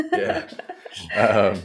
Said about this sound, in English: Sorry, our chairs are a little squeaky, by the way.